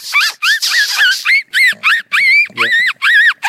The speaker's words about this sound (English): The smallest animal available on our vole squeaks playlist. Okay. Can you make that sound? No, well, with the Fox Pro, I can, but it's, everybody's got one.